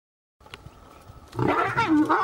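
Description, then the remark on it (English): A 13-year-old, huge, black-maned lion at a national park in Zimbabwe roars: a low rumbling start swells into a loud, throaty roar with rising and falling tones, alone with no talking. “Cecil was 13 years old, a huge black-maned lion”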